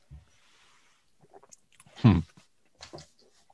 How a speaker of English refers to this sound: This is the awkward moment where people have to listen to us chew and swallow. I'm trying to be respectful.